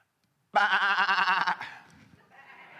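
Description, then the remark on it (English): A crowd of voices lets out one loud, wavering bleat lasting about a second, imitating sheep, then it quickly fades into murmuring and room noise. “Thank you, those who will willingly jump in with me and have some fun. We are sheep.”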